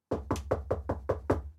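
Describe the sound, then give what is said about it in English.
A rapid series of about seven firm knocks on a door, evenly spaced, with no voices. “Let me see who or what is at the door.”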